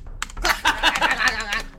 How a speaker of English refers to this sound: Okay, I'm going to Google moon door, and now you're going to have to hear my keyboard.